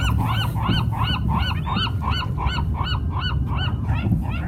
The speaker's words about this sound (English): It's just me and the birds.